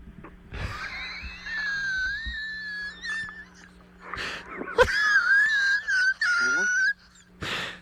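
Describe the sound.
A person in a comedic radio advertisement mimics a dog named Rover whining and howling in two long, wavering, high-pitched wails, fairly loud, with short breathy bursts between them.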